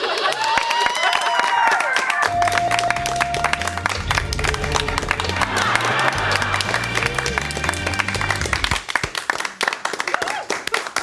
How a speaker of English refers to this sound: You know, you don't need to clap. No, it's fine.